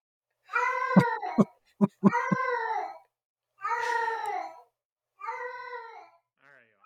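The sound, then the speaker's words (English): A female cat lets out several drawn-out, rising-and-falling meows, shaped almost like someone saying hello, with a few short sharp chirps between the calls and brief pauses after. “taught the cat to say hello”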